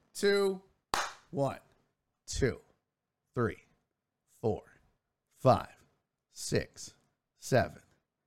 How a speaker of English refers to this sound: I'm going to clap. And when you hear the clap, I want you to put the number 1 in the chat. We're going to see how long this takes.